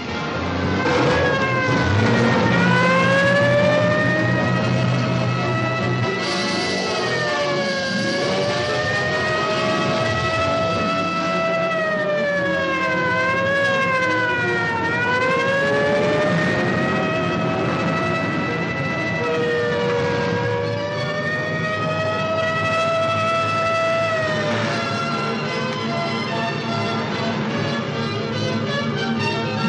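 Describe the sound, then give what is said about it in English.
Police car sirens from San Francisco Police Department squads sent out to parts of the countryside wail continuously, their tones sweeping up and down in overlapping cycles, loud for the whole stretch, with a steady rumble of traffic beneath and no voices. “Squads were sent to various parts of the countryside.”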